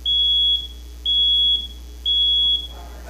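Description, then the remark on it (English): A smoke alarm sounds three loud, steady high-pitched beeps, each about half a second long, spaced evenly about a second apart, with no talking. “Okay, now we have a smoke alarm right here.”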